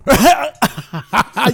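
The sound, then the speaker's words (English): Someone clears their throat loudly in a quick series of rough, raspy bursts, about five in a row with short pauses between them, and no talking. “Were you just clearing your throat to get ready?”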